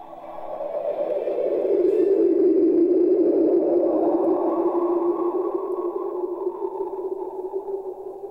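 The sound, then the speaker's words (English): A sonification of a black hole's X-ray light echoes, bursts of bright X-ray light produced as it feeds and bouncing off infalling gas: a sustained, droning low hum with a faint higher shimmer, swelling in gently and holding steady for several seconds before slowly easing off. No voices. “When a black hole feeds on this material, it produces bursts of bright X-ray light that bounce and echo off in the falling in gas.”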